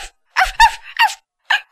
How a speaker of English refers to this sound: Father, I hear Cleo barking. She's in here!